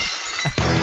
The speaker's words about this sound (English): Maybe get some glass breaking, Wait, I can make that happen for you if you want right now.